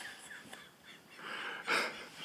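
Wheezy, raspy breaths build into a single harsher cough-like burst near the end, all fairly faint with no talking, like someone recovering from a coughing fit.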